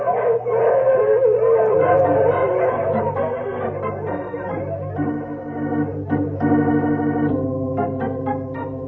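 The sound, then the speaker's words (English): A team of sled dogs pulling a sled howls together in a loud, sustained chorus, with shorter barks and yips breaking in toward the end, without any talking. “So I'll break the trail for the dogs.”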